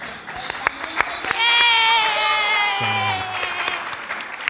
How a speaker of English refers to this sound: The Bible. There we go. That deserves some applause.